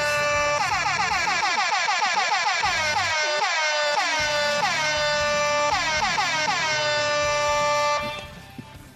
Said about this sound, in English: There wasn't a holiday jingle bell setting. That's a vacation horn right there. That is a vacation horn. That is a vacation horn.